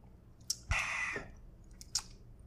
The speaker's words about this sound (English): And listen, folks. Let me get a sip.